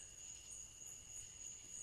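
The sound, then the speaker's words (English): A steady, high-pitched chorus of crickets trills continuously at a low, even volume, with faint background hiss and no voices. “That natural sound's rising and the crickets are coming down with the beat.”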